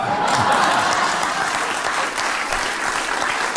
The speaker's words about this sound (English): So, I mean, there's no need for a clap that long for that.